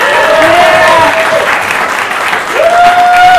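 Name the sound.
audience applause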